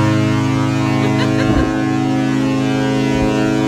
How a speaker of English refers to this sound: Gotta love the foghorn. I mean, it's super foggy out. I mean, it's like, you can't see anything. There's land over there. You can't see it.